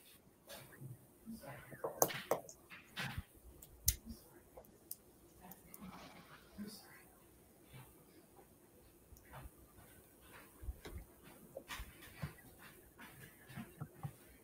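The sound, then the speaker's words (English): An 11-year-old dog, stuck between doors in a room, whimpers and cries in short, scattered bursts over about fifteen seconds, mixed with sharp clicks and knocks and faint, indistinct voices in the background. “She was stuck between the doors and she was crying, and I didn't know my son accidentally trapped her in a room.”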